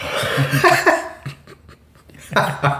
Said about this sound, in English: I don't think I've ever yawned on a podcast before. But I was holding it in. I was like, I kind of got a yawn.